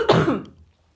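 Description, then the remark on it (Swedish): A single forceful cough with a throaty rasp, quickly tapering off into silence within about half a second. “Vi har tagit bort kisspausen och det blev en hostpaus.”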